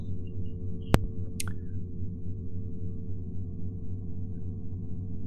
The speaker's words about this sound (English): And it's rather uneventful. You just hear the droning hum of the ship. You hear the various drips of water and such. Seems relatively quiet.